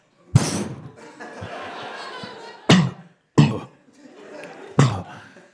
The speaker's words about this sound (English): Throwing down a smoke pellet.